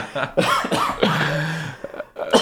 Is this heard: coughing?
yes